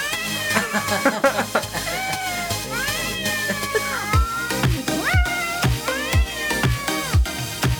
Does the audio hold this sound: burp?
no